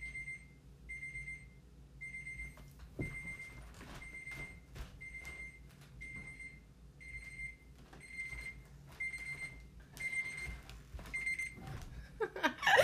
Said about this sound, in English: Okay, it was another phone beeping. I didn't even push stop.